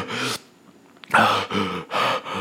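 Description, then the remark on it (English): A person imitates heavy, out-of-breath gasping after holding their breath while standing in a bank: four loud, breathy pants in an uneven rhythm, the first followed by a short pause before three quicker gasps. “But after about 10 minutes of doing this, like I got really out of breath.”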